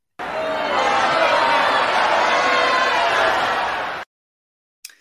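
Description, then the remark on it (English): A large crowd boos loudly and steadily for about four seconds, a dense wall of many voices that cuts off abruptly into silence, followed by a brief faint click. “And they weren't booing the winners.”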